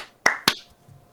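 Two quick, sharp hand claps for audio sync after a countdown land about a quarter second apart, crisp and bright, with no talking around them and near silence afterward.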